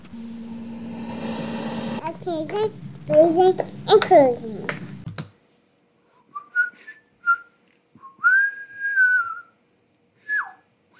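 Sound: person whistling a tune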